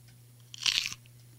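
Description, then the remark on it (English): A single crisp crunch as someone bites into a fresh snap pea held in the hand, sharp, lasting under half a second over a faint low hum. “I think the snap pea, I've got a fresh one in my hand.”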